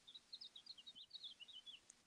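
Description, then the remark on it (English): A steady stream of bright, high-pitched bird chirps repeats rapidly over about two seconds, faint, from birds outside a window, with no talking. “Are you hearing bird sounds?”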